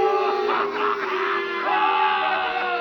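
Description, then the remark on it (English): A courtroom crowd at the trial of Émile Zola jeers and shouts in a dense, unbroken roar of many voices, loud and steady for a few seconds, with rising cries and yells mixed into the din. “The crowd encouraged to jeer at the man of truth.”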